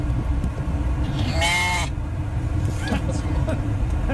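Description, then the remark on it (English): A sheep, one of a couple in a truck being driven home, lets out one loud, wavering bleat, then a shorter, fainter one, over the steady low rumble of the truck engine and traffic as the truck is stuck in traffic. “It's my wife driving home with a couple of sheep in her truck, stuck in traffic.”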